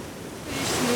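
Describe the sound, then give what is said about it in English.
A wave rushes up a beach at night under a bright moon, a soft hiss of surf that swells louder over a single second, with no voices. “The last wave has come in and they're gone.”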